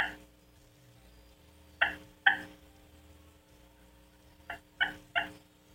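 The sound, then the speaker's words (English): Soft, short hen clucks from a turkey call struck slowly to imitate a hen to a gobbler, a pair followed by a quick run of three, each sharp and clipped against a quiet, steady background with no talking. “And if you've got some kind of blind up in front of you so they can't detect your movement, just hit him and soft you up like this, or soft cluck. Soft cluck, I'm here, look here.”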